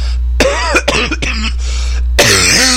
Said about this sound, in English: Excuse me. Sorry about that loud cough there.